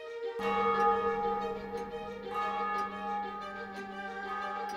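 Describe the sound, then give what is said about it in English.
A clock strikes three times, each deep, resonant chime ringing out slowly and overlapping the long humming decay of the one before, with no voices. “But upon the instant, the clock struck three.”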